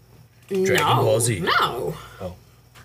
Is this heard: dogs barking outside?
yes